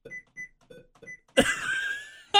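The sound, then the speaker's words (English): Computer sticky keys alert, triggered by pressing the Shift key five times: four short, high electronic beeps, each with a soft key-tap thud, followed by a louder, longer sustained chime that ends abruptly. “Sticky keys. And then it's like... Weird sound too? It goes... Bloop, bloop, bloop.”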